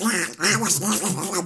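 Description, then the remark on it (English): A person does a Donald Duck voice impression: a burst of raspy, garbled quacking babble, fairly loud, running continuously for about a second and a half with a brief dip midway. “No one can understand what I say as Donald.”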